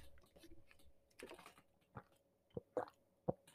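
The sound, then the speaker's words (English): Someone quietly takes a sip of water, a few soft wet gulps and mouth clicks at an uneven pace over faint background hum, with no talking. “Let me grab some water before my throat gets sore.”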